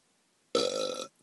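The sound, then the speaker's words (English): A single short, croaky burp, about half a second long, fairly loud against near silence, apparently a person imitating a receptionist's belch in a quiet reception area. “The receptionist let out a little burp.”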